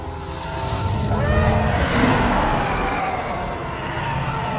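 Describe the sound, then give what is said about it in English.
TIE fighters approach and roar past, a loud, screaming engine howl with pitch sweeping up and down, swelling early and then holding as a steady, dense roar. No voices. “Okay, we're about to hear Ties approach and then pass.”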